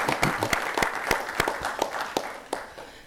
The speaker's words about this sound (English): Let us give them another hand clap.